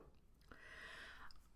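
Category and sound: human body sound, swallowing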